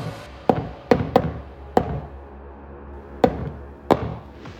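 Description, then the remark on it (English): Knocking from the other side of a closet in the shave-and-a-haircut pattern: a quick run of sharp knocks, a brief pause, then two final knocks. No voices. “Not just any knock, but the rhythm she'd used earlier. Shave and a haircut, 2 bits.”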